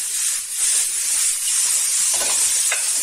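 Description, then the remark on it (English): Yellow and green bell peppers and ginger fry with carrots and mushrooms in a pan with a steady, loud high-pitched sizzle and hiss, broken briefly by a couple of soft stirring clatters near the end. No one speaks. “Then add the yellow bell peppers.”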